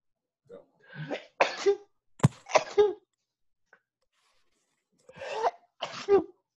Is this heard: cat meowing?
no